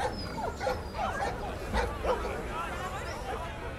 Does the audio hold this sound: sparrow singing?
no